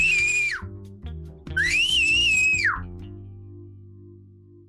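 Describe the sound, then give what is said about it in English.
Two loud, piercing human whistles, each held steady and ending in a sharp downward slide, the second one longer, very loud over a low, steady background hum. “I could whistle very, very loud, like very loud. If you want, I could whistle right now for you.”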